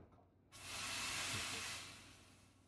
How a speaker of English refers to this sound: Cleaning the steam wand.